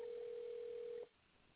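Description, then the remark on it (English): A single ringback tone plays over a phone line, a steady, slightly muffled hum lasting about a second before cutting to quiet line hiss. No one picks up or speaks. “Okay, yeah, she's not even answering the phone.”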